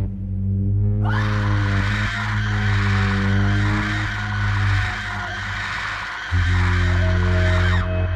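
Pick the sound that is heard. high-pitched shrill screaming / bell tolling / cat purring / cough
high-pitched shrill screaming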